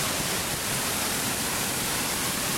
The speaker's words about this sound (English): Yeah, it's a bit noisy, but they're quite spectacular. And the amount of water that's tipping over the top of Ferguson Falls is just amazing. So definitely worth seeing.